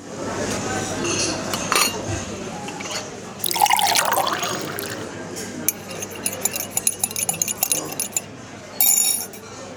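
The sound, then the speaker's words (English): Tea pours into a cup in a short splashing stream, followed by light china clinks and a brief second pour, with faint murmuring in the background. “So pour yourself a cup of kindness and take a seat with us in the CuriosiTea Room.”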